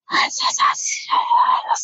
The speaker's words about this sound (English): Why is everyone saying, did no one hear the whispers?